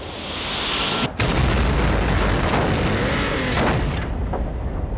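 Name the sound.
missile strike explosion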